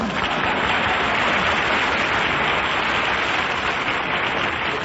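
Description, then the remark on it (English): Steady, dense applause from a studio audience fills the whole stretch, a loud continuous wash of many hands clapping without pause, with no voices standing out. “Chuck, that applause is liable to tip off Cactus Face.”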